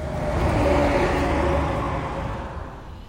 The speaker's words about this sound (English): Cars, trucks, buses, motorcycles, all speeding by on Northwest 27th Avenue, creating the constant rumble of traffic, punctuated by the occasional semi-truck passing.